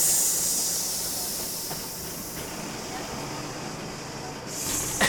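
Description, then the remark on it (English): A steady, loud hiss of escaping air from a bus's hydraulics runs throughout, like a slow tire leak, with a brief sharper burst of hissing near the end. “Is that a flat tire? Like, right? What happened to this bus? Why the a.k.a. slow leak?”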